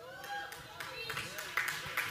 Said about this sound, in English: Yeah, I got about 7 golf claps on that.